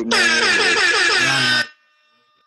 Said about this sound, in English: Puts it up for three. Buzzer.